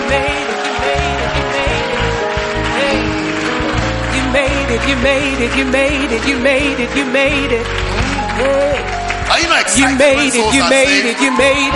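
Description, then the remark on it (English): A crowd claps and cheers loudly and continuously for people being congratulated as they return to their seats, with whoops and excited voices blending into a dense, steady roar that carries on for the whole stretch. “Please go back to your seats. Clap for them.”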